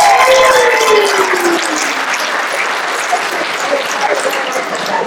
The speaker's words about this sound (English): Give the kids a round of applause.